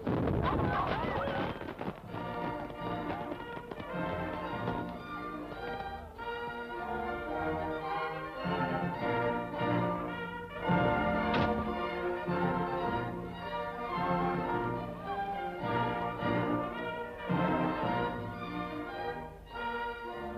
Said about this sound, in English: Nightfall brings the fireworks.